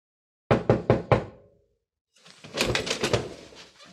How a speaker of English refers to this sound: Hey, Senator, I'll say Senator Claghorn's my name. Who's that rapping his gnarly knuckles on my solid oak?